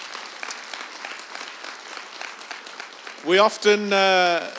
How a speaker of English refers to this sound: Amen and well done. Come on, let's applaud drummers.